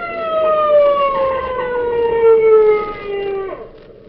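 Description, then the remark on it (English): A motorcycle police officer's siren wails in a long, steady tone whose pitch slowly sinks, staying loud throughout before dipping sharply and fading near the end. No one speaks. “There's somebody coming. Motorcycle cop.”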